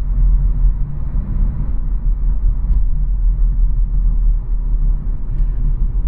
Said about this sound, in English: But can you tell from the sound of the engine what car I'm driving? Or what speed I'm driving? Take a guess.